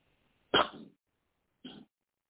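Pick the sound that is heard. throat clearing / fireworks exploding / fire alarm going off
throat clearing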